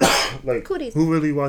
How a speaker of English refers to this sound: That's a cough. Thank you very much. Anyway. Bless you.